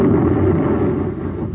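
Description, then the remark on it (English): A loud, sustained explosion from explosives rained down by a spaceship rumbles with a deep, roaring low end and a crackling wash on top, holding steady before easing slightly toward the end. No voices are heard. “Evidently abandoned by their would-be protector, Buzz and Happy vainly try to fire space guns at Baccarati as the evil prince rains explosives all around them.”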